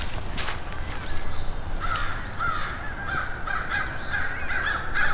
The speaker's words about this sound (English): It's about 10 crows here and an eastern Phoebe singing. And Canada geese. Some very unhappy crows here.